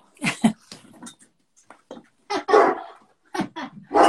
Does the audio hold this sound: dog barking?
yes